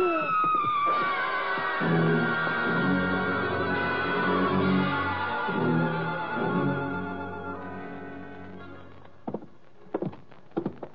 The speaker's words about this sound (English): That was a woman screaming